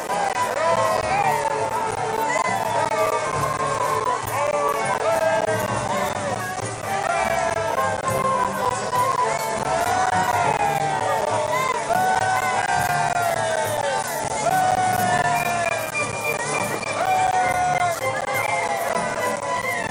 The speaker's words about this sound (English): As he rode along, the crowd rejoiced and praised God, proclaiming Jesus as king.